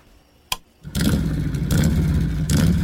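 A sharp click, then a motorcycle engine fires up loud, idling with a throaty rumble and revving twice in quick bursts, with no voices.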